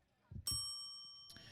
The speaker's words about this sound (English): Once again, that bell represents the pitch was thrown.